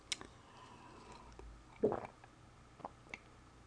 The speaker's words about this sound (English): I don't really swallow that hard, I just do it for effect.